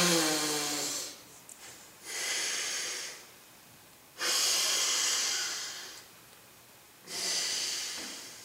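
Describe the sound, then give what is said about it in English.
Slow, controlled alternate nostril breathing, a yoga pranayama practice: about four long, airy inhales and exhales through the nose separated by short pauses, steady and deliberate, with no talking. “Alternate nostril breathing.”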